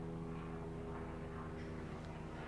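A steady, low droning hum of a propeller airplane flying overhead, holding an even level throughout with no voices present.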